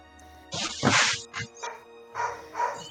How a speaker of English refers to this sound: This dog would stop barking!